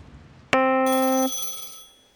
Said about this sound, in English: Always a ringing phone.